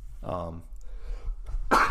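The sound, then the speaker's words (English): A voiced intake builds into a sharp, explosive sneeze near the end, loud, the burst spreading across a wide band of noise. “woo. Bless you.”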